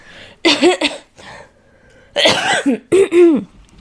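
Several loud coughs in a cluster, each a harsh rasping burst with a throaty, voiced edge, separated by short pauses and a faint breath between them.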